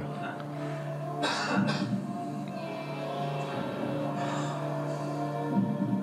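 A pair of quick, raspy coughs from somebody sitting in a crowd, its volume increased for a documentary, bursts out over a steady hum and faint voices.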